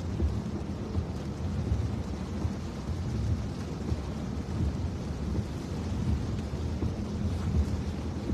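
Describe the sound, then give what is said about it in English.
Steady rain falls outdoors after dark on Warwick Avenue in Warwick, in a continuous, even wash of noise, heavy in the low end with a deep rumble underneath, like a storm. No voices are heard. “And it's amazing how, first of all, it's dark out, plus now the rain.”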